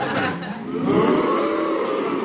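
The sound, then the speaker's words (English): A group of men's voices imitate a cow's moo together as a yodeling exercise, a loud, sustained low drone that swells slightly in pitch and holds steady for a couple of seconds. “For the men, if you want to yodel, you have to imitate the shout out of a cow.”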